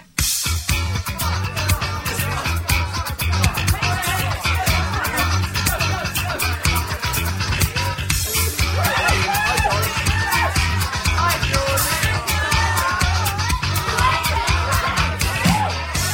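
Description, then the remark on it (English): A steady, dense murmur of crowd chatter and party noise runs throughout, with a low, pulsing bass underneath, at the start of the original instrumental version of a track on a CD single. “So the original instrumental I have on the single has a crowd noise at the start.”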